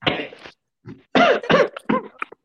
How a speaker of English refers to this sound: Don't cough on that